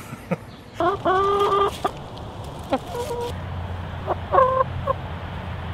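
Backyard chickens cluck in short bursts of nasal, throaty calls, a busier run near the start and a few scattered clucks later, over a low steady background hum.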